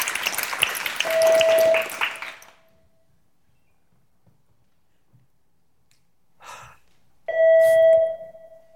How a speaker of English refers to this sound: Houston, we seem to have a problem here. Seems like we have an unknown beeping object at our comms panel. Please advise.